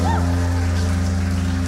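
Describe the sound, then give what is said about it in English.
An audience in the gym at Barcelona Academy claps as an offering to God in a dense, continuous wash of applause, holding an even loudness throughout, with a sustained low musical drone underneath and a brief high cry near the start. “Can we hear another clap offering for our God in this place?”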